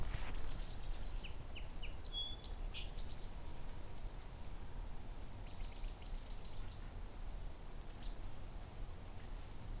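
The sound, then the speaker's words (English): High, thin triple calls of a golden-crowned kinglet repeat in quick bursts, faint over a steady low outdoor rumble in a vineyard region, with other small bird notes scattered around. “There's a golden crown kinglet, a triple ring.”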